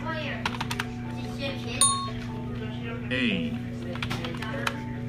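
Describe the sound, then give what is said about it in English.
Keys clack sharply on a computer keyboard in quick, uneven bursts, struck hard. A voice speaks briefly over a steady low hum. “You're gonna break the keyboard.”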